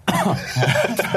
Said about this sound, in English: Just cough.